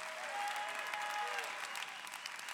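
An audience claps their hands in a dense, steady wash of applause, loud and continuous for the whole stretch, with faint tonal sounds drifting underneath.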